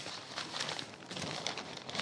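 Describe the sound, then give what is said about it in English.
A wet newspaper is unfolded and handled, giving a steady, crisp rustling and crinkling of paper that lasts throughout, fairly soft, with no voices. “Uh-uh, that newspaper ain't mine. That's yours. Boss told me to bring that up for you. Sorry I got it wet.”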